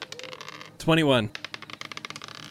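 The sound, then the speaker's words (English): Rapid, light clattering taps of a brand new die tumbling across a tabletop in a perception check roll, landing a natural 20, fairly quiet, with a short excited vocal exclamation breaking in midway. “It's a natural 20 with a brand new dice!”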